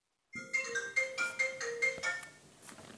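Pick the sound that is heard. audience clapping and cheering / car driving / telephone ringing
telephone ringing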